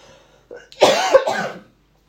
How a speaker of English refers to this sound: God, I'm coughing an awful lot. Sorry, listeners, I apologise.